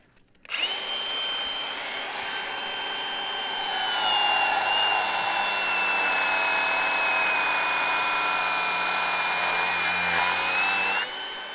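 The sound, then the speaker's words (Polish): A cordless, battery-powered angle grinder whines steadily as its disc cuts through the fastening elements of an old metal ladder, scattering sparks. Its high, sustained tone grows harsher and louder partway through, then stops abruptly after about ten seconds. No one speaks. “Wszyscy przyglądamy się, jak tarcza szlifierki przecina elementy mocujące, rozsypując wokoło iskry.”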